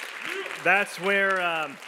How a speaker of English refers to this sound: But I'm telling you, that's what my wife, everybody give my wife a hand clap for coming up. That was awesome.